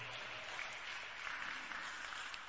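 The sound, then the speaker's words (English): An audience applauds steadily in honor of the First Lady after her Mother's Day message, a dense continuous patter of many hands clapping at an even level throughout, with no voices standing out. “Let's clap in honor of him once again.”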